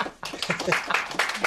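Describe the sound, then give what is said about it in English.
A room full of people clapping for guests introduced on The Spaceman show, with quick, uneven, overlapping claps that start abruptly and stay fairly loud and steady, bright and crackly with no voices. “Oh, wow, that's a room full of yeah, clapping.”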